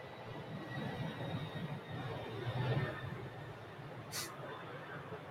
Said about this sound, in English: Is that a plane? We'll wait.